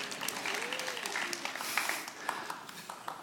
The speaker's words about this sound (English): You can clap if you want to. Come on, don't you want to clap?